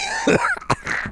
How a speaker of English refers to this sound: Are you okay? Is it over? No, I coughed, but it sounded like I died.